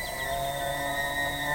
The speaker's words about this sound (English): This is the eerie mating call of the American elk during rutting season.